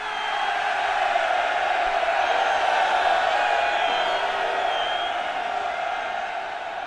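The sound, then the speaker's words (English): A large crowd cheers wildly, a dense, sustained roar of shouts and whoops holding steady at high volume for several seconds with no pauses. “The crowd, mostly silent until then, went wild.”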